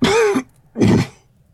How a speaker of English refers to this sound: The old man simply smiles, coughing blood and phlegm.